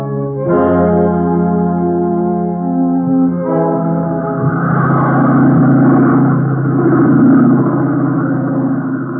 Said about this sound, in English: The great plane ate its way through the night, speeding to San Francisco at 18,000 feet and 420 miles an hour.